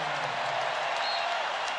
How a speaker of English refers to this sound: Getting a nice hand from this Raptor crowd.